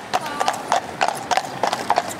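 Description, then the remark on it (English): Hooves of a police horseback patrol in Vancouver's West End clip-clop on a hard street surface in a steady walking rhythm, sharp paired knocks repeating about every third of a second, fairly loud and alone with no talking. “She says that includes more foot patrols, more bike patrols, more horseback patrols.”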